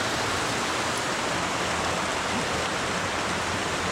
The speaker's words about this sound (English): Just sitting there, like it's just pouring rain right outside their tent.